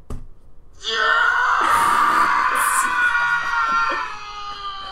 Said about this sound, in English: What is the title for that? Man screaming sound effect. What do you expect? I don't know. I just thought there would be some sort of situation for why he's screaming. Sorry. Stop. That was so loud.